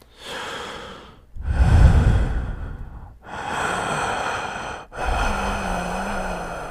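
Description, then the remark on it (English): Four loud, heavy breaths into a phone in sequence, alternating long rasping inhales and exhales with brief gaps between them, a faint low hum briefly under the last one; no talking. “Even if you have to leave a message, all you have to do is breathe in the phone. And the louder you breathe, the more attractive it'll sound.”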